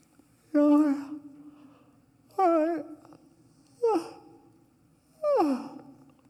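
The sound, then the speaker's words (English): Four separate yawns, each a short voiced stretch that slides downward in pitch. They come at a slow, uneven pace with quiet pauses between, and no talking. “Yawns again.”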